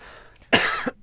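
A loud cough: one harsh, noisy burst lasting a fraction of a second, followed quickly by the sharp start of a second cough, with no talking.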